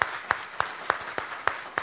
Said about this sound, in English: If you've served in any of the branches of our military, would you join our other friends who are standing? Can we give these friends a big round of applause this morning? Thank you.